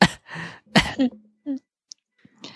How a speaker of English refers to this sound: No, I'm coughing for real. I'm sick.